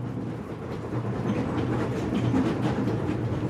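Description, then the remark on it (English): A steady, rumbling train ride with a continuous low mechanical drone and faint rhythmic clatter, moderately loud with no voices; the train is headed for the North Pole. “All this time on the train, we've heard such beautiful music by all these musicians, right?”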